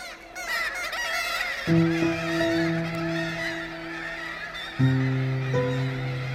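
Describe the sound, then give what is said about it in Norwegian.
A dense, noisy chorus of kittiwakes calls together from a seabird cliff colony in Norway of about 10,000 nesting pairs, overlapping cries and long honking wails rising and falling continuously, loud with no talking. “Det var veldig sånn enormt, du kom inn under det her fuglefjellet. De lager veldig mye lyd, så de ganske sånn mektige.”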